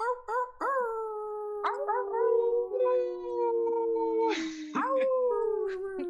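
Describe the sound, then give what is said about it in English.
Several people, over unmuted microphones during a broadcast, imitate wolves, howling together in long, sustained tones that slowly slide downward in pitch. A brief breathy burst cuts in before a final rising howl. “So let's get those wolf howls going.”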